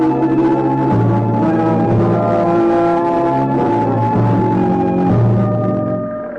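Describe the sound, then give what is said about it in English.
A fire engine of the Greenville Volunteer Fire Department races past through town toward the Dexter Dean chemical plant, its heavy engine droning loudly with strong tonal whines that shift pitch every few seconds, then begins to fade away at the end. No one speaks. “I thought of going in to see it as an antidote for inaction when I heard the fire engine.”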